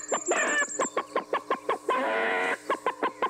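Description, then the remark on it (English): A person posing as a cowboy chicken makes a quick rhythmic series of loud clucks broken by one drawn-out squawk midway, with no other voices. “I will not be able to have a civil conversation here if you keep clucking.”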